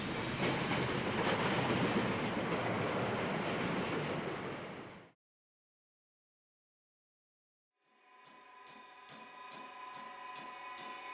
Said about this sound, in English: Before he could be certain, the train rolled on.